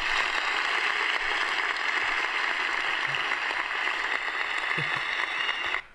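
Steady, dense applause from a crowd, a continuous crackle of many hands clapping at an even loudness for about six seconds before it cuts off abruptly.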